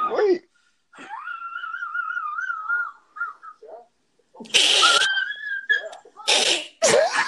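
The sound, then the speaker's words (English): A dog wheezes and pants, with drawn-out high whining tones broken by harsh, breathy snorting bursts, fairly loud, in irregular spurts over several seconds. “Hey, your dog sound like he needs some water over there.”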